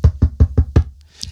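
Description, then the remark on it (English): Five quick, evenly spaced knocks on a wooden surface, solid with a dull low thump, followed by brief quiet and a faint rustle. “No, I'm not knock on wood.”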